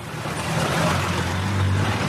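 Slow street traffic at a street corner in Bangladesh rumbles steadily as vehicles inch by with horns and bells sounding, a low engine drone and dense road noise filling the scene at an even, moderately loud level, with no talking.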